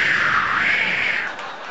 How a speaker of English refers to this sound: I guess, are there any good marriages here? Well, there's a wave of applause.